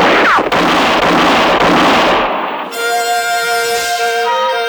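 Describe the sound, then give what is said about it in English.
Loud, dense volley of gunfire crackles for about two seconds with a few sharp, distinct shots during a hold-up shootout in a moonlit clearing, then abruptly gives way to sustained ringing tones. “For about 5 seconds, the moonlit clearing thundered to the sound of gunfire.”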